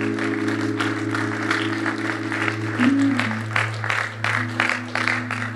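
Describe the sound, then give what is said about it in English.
A crowd applauds steadily for several seconds, a dense patter of many hands clapping at a fairly even level, with a low steady hum droning underneath. “Let's give her a clap, shall we?”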